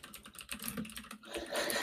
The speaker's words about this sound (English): This is excellent for the sound. She's really typing, guys. She's really typing.